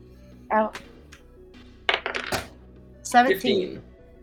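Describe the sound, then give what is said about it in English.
Two twenty-sided dice (d20) clatter and tumble across a table in a few short bursts of hard rattling, with brief vocal sounds mixed in around them. “Let's roll it. D20 from both of you.”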